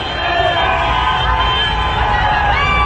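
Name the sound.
crowd celebrating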